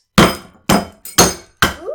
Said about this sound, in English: Like, I'm not even exactly sure what it is. So, it looks like a seed, so we're gonna try banging it up.